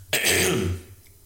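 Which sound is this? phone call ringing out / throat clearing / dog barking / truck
throat clearing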